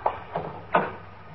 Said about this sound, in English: Well, I'll try the door.